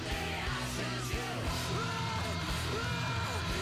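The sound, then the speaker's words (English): Guitar feedback wails over a loud, dense rock mix, its sustained tones bending and gliding in pitch above heavy, steady low chords for the whole stretch. “I think it was just feedback.”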